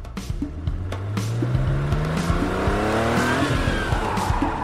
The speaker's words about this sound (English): A busted-up Mercedes-Benz roared through an underground parking garage in Berlin, careening dangerously in circles amid the piercing squeal of rubber on concrete. David Bowie was doing donuts, and he was definitely breaking the speed limit.